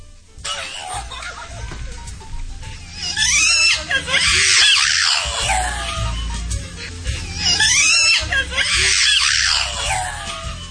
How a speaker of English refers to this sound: I'm going to actually let you decide whether or not this Boston Terrier is saying, I love you.